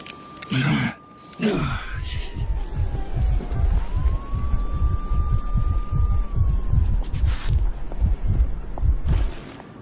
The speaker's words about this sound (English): I can't remember if we said, but basically the building goes into lockdown as soon as you arrive. So you're locked into this building with like sirens going off, all the technology, which absolutely lines the walls, seems to be flashing constantly.